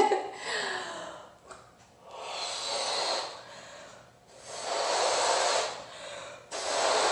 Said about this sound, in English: So now we're going to blow our balloon, which I personally don't like doing, but I'm going to do this.